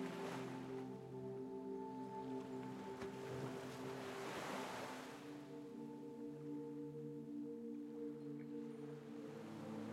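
Ocean waves surge and wash ashore in slow swells, the loudest near the start and again midway, layered under steady sustained droning tones with no one speaking.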